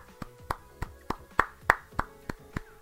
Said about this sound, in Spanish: Aplauso grande para todos los presentes.